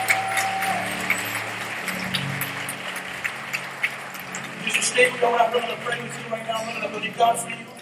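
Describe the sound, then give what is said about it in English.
A crowd claps for the Lord as an offering, in a dense, steady patter of many hands, with scattered louder bursts, a low hum and a faint voice beneath the applause. “Come on, give the Lord a great clap of offering.”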